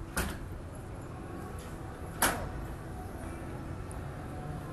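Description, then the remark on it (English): A door opens and shuts as people who work there walk through it, giving two sharp clunks about two seconds apart over a steady low rumble of background noise. “Some of them who work there just walked through the door to go do the jobs that they do because they exist in this bubble that I'm outside of.”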